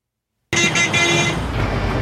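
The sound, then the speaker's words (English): After a short silence, loud city traffic bursts in, with engine rumble and a sustained car horn blaring over the roadway noise, heard on a bus approaching King's Cross outside rush hour. “On a bus approaching King's Cross. It's outside rush hour, so we should sail through, especially if the claims made about the congestion charge are true.”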